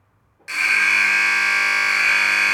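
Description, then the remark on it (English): A long basketball buzzer starts abruptly after a brief silence and blares steadily for over two seconds, a loud, harsh, buzzy tone with a bright, piercing edge and no talking. “That's a long buzzer, isn't it?”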